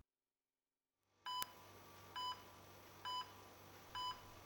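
Electronic beeps from hospital machines sound at a steady, even pace, four short tones about a second apart over a low constant hum, in a cold and drafty hospital room.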